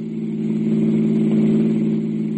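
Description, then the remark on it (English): A car engine hums steadily as the vehicle drives uptown, a low, even mid-pitched drone with a slight swell in loudness midway through and no voices. “I drove him uptown.”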